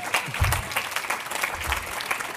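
An audience claps steadily, a dense wash of overlapping handclaps holding an even level for a couple of seconds, with faint low murmurs underneath.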